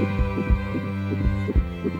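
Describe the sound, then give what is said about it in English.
A deep, muffled heartbeat of another person thumps in slow double beats, two lub-dub pairs over two seconds, beneath a steady low humming drone with no voices. “The heartbeat of another.”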